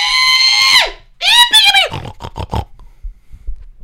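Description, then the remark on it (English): A person belts out a loud, drawn-out hog call, two long rising-and-falling yells followed by a few short punchy syllables, strong with no other talking. “It was a big, it was a really good call of pig.”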